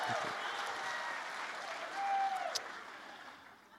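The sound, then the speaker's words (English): A crowd cheers and applauds steadily, a dense wash of clapping with a few voices and whistles rising over it, loud throughout before easing slightly at the end. “And everyone's the cheers, the applause, high fives louder than ever.”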